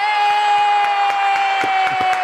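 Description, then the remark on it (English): A loud crowd cheers with a sustained, high-pitched whooping tone while hands clap in a steady rhythm, welcoming a guest. No one speaks. “Oh, you sure know how to make somebody feel good in starting in having that round of applause.”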